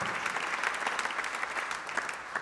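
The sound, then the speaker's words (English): Steady audience applause thanking a speaker for sharing, a dense patter of many hands clapping at an even level for the whole stretch, with no voices standing out above it. “But anyway, can we give Doug a huge round of applause, say thank you so much for sharing.”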